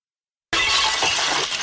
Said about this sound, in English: Yes, man, if we, the ceramic breaking sound. If we could just add the ceramic breaking sound at the beginning.